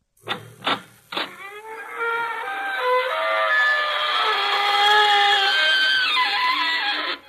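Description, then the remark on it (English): A door creaks open in one long, loud, squealing groan that wavers and slides in pitch for about six seconds, preceded by three sharp raps. No one speaks. “This is your host to welcome you through the creaking door into the inner sanctum.”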